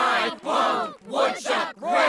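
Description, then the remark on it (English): A loud crowd chants in unison, led by Mr. Peanut Butter, an actor running for governor, shouting a repeated phrase in rhythmic bursts, about four strong surges with short breaks between them. “So Mr. Peanut Butter goes into the crowd and starts getting them to chant.”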